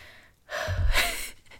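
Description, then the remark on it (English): A single heavy, airy breath drawn into the microphone, with a low rumbling puff as the air hits it, lasting about a second with no talking. “Sorry if my breathing annoys you during this.”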